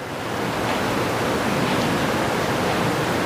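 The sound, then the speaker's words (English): Steady rushing of a little babbling creek, water flowing continuously with a dense, even hiss and no pauses, moderately loud, with no voices. “Having a window right there and that thing running next door to us over here, that little creek. Oh, that's such a nice way to sleep. The babbling of the brook, the sound of the wind.”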